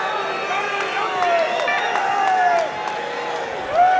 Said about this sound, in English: And the crowd goes back into the do do do do do, and it's goosebumps. It's chilling that they do this.